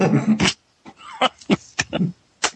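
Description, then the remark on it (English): A female dog whines in a series of short, uneven bursts, with snuffly grunting noises between the higher whimpers and no one talking. “Are you hearing that dog whine?”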